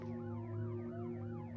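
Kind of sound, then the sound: signal or alarm, emergency vehicle sirens approaching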